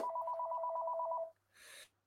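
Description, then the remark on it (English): A telephone rings loudly with one rapid warbling two-tone burst lasting just over a second, then a short breathy hiss follows after a brief pause. “And it's going to ring some more.”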